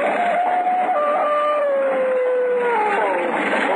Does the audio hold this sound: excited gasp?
no